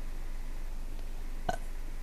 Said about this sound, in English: I burped. I'm sorry.